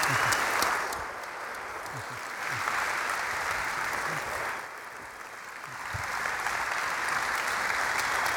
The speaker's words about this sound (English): I think we got a little more clapping to do, it looks like. All right, that's enough.